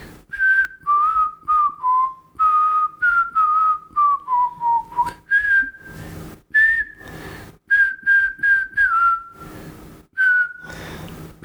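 A person whistles a melody, clear pitched notes in quick phrases that shift from one tune into another, with brief breathy gaps between phrases and no talking.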